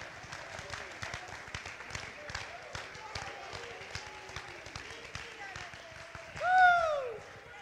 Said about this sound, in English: Oh, somebody clap your hands and just act like you like it.